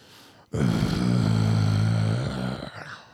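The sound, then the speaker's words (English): A rapper lets out his loud, rasping, dog-like growl-bark: one long gravelly roar that starts abruptly, holds for about two seconds, then trails off into a rougher grunt. “That bark.”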